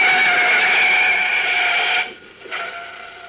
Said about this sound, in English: Olsen were leaving the scene of the recent subway cave-in with a shoebox full of concrete specimens, a large black sedan, throttle open, roared down on the boy reporter from behind.